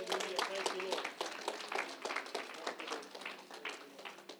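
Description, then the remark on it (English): An audience at a church service claps hands together in praise of the Lord, a dense, continuous burst of applause lasting several seconds, fairly loud, with some voices mingled underneath. “Let's give the Lord a mighty hand clap of praise.”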